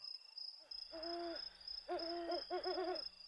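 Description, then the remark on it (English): An owl hoots from a distance in three drawn-out calls, the last one wavering, over a steady high insect-like whine and faint night ambience. No one speaks. “The only thing we could hear was the distant hooting of an annoying owl.”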